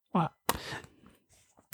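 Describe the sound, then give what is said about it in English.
An exaggerated cough: a short voiced grunt, then one loud, harsh burst that rasps and trails off, followed by a few faint breathy sounds and a brief final catch. “I really leaned into that cough because I knew it was going to make you laugh.”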